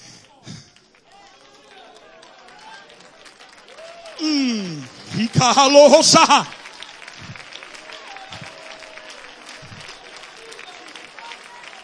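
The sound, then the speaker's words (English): An audience claps steadily while voices rise over it, swelling into a loud burst of clapping and shouting in the middle before easing back to lighter, continued applause. “Brother, right there, clapping your hands.”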